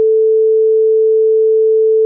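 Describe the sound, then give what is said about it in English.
A steady, loud censor bleep tone covering a cell phone number given out on air holds one pure pitch for about two seconds, starting and stopping abruptly with no voices underneath. “We're going to have to bleep that.”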